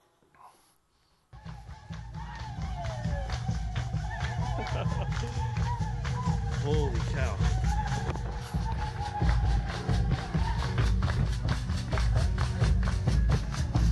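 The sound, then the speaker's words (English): After a brief quiet moment, a full drum line pounds out a loud, steady, fast, dense rhythm at a village welcome. The voices and singing of a lined-up crowd rise over it as visitors are paraded past. Someone exclaims at the start. “Full drum line, everyone's lined up, parading us past them.”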